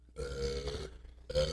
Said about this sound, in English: Oh, don't burp. Oh, that's fucking rancid. It brings that flavor back up.